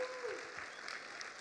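Steady applause from an audience, given as another round of applause for seniors who shared their stories in a video. A dense patter of many hands clapping at an even level throughout, with a faint voice briefly audible underneath.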